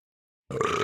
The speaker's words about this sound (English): Well, that's the 15th burp, and I think that means the show is over.